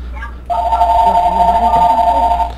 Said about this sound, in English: Meanwhile, that phone blowing up in the background is probably the alarm company calling to confirm, you know, a case that was opened improperly or something.